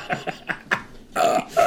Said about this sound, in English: And he comes in, and he just cracks one up, and he starts chugging a Yingling. He just burps and walks out.